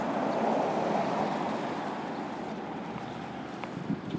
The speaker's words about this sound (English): A little traffic going by.